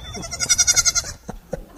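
A goat gives one loud, wavering bleat with a rapid pulsing tremble lasting about a second, followed by a couple of short soft thumps.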